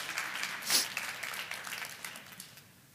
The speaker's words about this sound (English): Y'all can clap for that. That's okay.